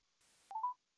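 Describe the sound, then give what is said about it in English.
A brief burst of hiss gives way to two quick electronic telephone keypad beeps in close succession as a phone call is dialed, clear and fairly loud, with no talking. “And she's definitely going through.”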